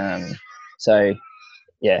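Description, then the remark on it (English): Crows caw in a front yard where a lot of them have just come out, three loud, harsh, nasal bursts, each about half a second long, separated by short gaps with faint chatter trailing between them. “It sounds like you're being attacked by tagwork crows over there, mate.”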